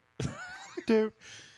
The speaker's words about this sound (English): You have an old man cough.